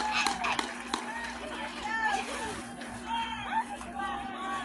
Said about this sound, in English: He throws over. He can't. It's late, and the Van Buren Warriors have a run. And the crowd goes wild.